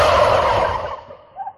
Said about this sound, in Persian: تکبیر برات فرستادم دیگه با بوقلمونا.